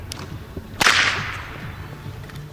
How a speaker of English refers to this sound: Eventually, the second whipper walked over the bridge and hesitantly let me record his whip up close.